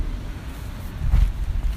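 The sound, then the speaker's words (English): Wind rushes through a stand of burned-up trees on a high ridge in a steady, low, ocean-like roar that swells louder partway through and then eases slightly. No voices are heard. “The wind blowing through the trees kind of sounds like the ocean, and I'm gonna yell some stuff.”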